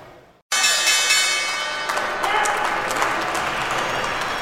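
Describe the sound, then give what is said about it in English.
The New York Stock Exchange opening bell, rung by the firm Global Payments, rings out loudly and steadily for over a second, then gives way to a burst of sustained crowd applause and cheering that continues to the end. “The firm Global Payments, you see them there, have rung the bell and opened here on what is a bit of a lackluster day.”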